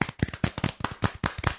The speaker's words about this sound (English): That is brilliant. Bravo. I'm going to applaud your first.